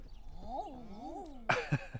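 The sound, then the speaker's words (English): Common eider cooing calls: two smooth, rising-and-falling crooning notes, followed by a few shorter, sharper calls near the end. No one speaks. “These are common eider, and these are the ones that we generally get in the UK.”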